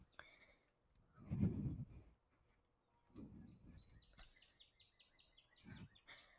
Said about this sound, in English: You hear in the background a bird.